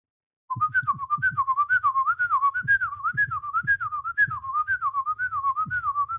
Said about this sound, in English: Give a hint by simply whistling like 2 seconds of a tune.